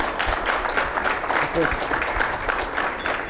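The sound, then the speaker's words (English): An audience applauds steadily for about three seconds, a dense, even wash of many hands clapping at a constant loudness, with a brief faint voice surfacing beneath it. “It took them 45 minutes to clap for something you said.”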